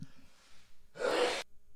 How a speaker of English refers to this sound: Excuse me, had to sneeze.